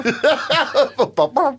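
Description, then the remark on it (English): A voice imitates a chicken clucking: a quick run of about seven short, throaty bursts in a steady rhythm, fairly loud, with no other sounds. “They should have then dubbed on a little bird whistle.”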